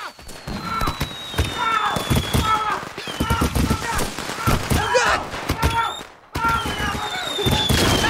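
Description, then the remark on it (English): Fireworks are set off inside a hearse in a rapid, crackling barrage: sharp bangs, fizzing bursts and high whistling streaks, loud, with a brief lull near the end before the popping resumes. Voices sound faintly underneath. “He wants to get them back by setting off fireworks inside the hearse.”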